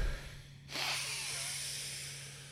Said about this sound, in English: Getting your mind right first thing in the morning is so good for you. Deep breathing is very cleansing.